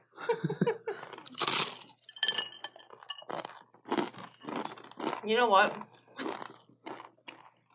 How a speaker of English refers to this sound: Look, you hear that? You hear the crunch? It sounds like she's chewing on rocks.